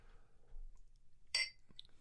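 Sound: glasses clinking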